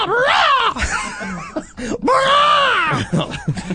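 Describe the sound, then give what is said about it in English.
A man's voice imitates a crow's caw in loud, drawn-out, strained cries, roughly three long wavering calls with shorter rasping bits between, each rising and then falling in pitch. “Caw? Caw? Caw. Like a bird?”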